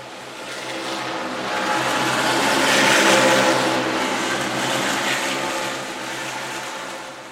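Race car engines roar at Bristol during a night race, a loud, continuous mechanical drone that swells to a peak midway through and then eases slightly, thick with steady harmonic whine and rushing noise.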